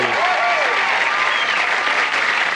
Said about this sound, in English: Thank you. That's way too much applause, really.